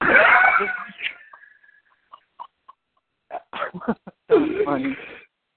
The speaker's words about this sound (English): Man, your snoring scared me. I didn't even know what was that. I'm used to his snoring, so when he snores, he sounds like he's beating somebody up.